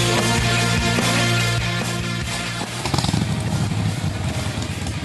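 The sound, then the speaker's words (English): A Harley-Davidson motorcycle engine rumbles loudly with a deep, steady idle, then roars rougher and harsher as the throttle is blipped in the second half. No voices. “Needs a revver for Harley Heaven.”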